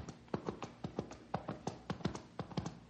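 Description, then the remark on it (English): The hooves of an approaching horse clip-clop in a steady, brisk rhythm of sharp knocks, clear, with no voices over them. “hear that? It sounds like a horse.”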